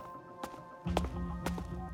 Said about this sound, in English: Then she heard footsteps.